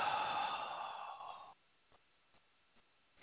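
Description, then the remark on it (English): A long, airy breath, a deep inhale that is held and then exhaled during a breathing exercise, fades out after about a second and a half, followed by near-silence with faint clicks before the next breath begins. “So we're going to take one nice long deep breath in. So we're going to inhale and hold and exhale.”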